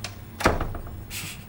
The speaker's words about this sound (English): Close the door. Thank you so much.